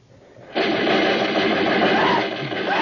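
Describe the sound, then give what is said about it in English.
After a brief quiet moment, rifle gunfire erupts abruptly into a loud, dense, sustained volley that rattles on steadily for over two seconds with no one speaking. Soldiers are firing rifles at Japanese snipers in the bush near the mouth of a river. “As we shot, 10,000 parrots and macaws started screaming in fright at the sudden outburst.”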